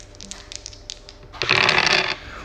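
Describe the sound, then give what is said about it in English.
A few light, quick clicks like dice rattling in a hand, followed by a louder burst of clattering as they tumble and scatter across a hard surface for about half a second. “I have the dice. Here we go.”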